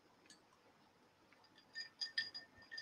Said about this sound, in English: Let me have a swig of me water. Hang on.